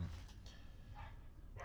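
A few dogs in the neighborhood bark, three or so scattered yaps rising over a low, steady background rumble, with no one talking.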